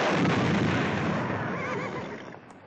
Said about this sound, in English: You can see by the size of that explosion and one that will follow later on that there is nothing realistic about the blasts in these films.